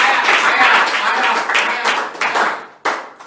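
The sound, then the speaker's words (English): An audience claps in praise to Jesus, a loud, dense burst of many hands that swells and thins over a few seconds, briefly dropping off before a final surge of clapping. “Can you give him a clap of praise?”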